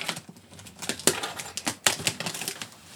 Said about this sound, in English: Anyone have a package opening utensil? Sometimes I bring a knife. I didn't this time. We got keys.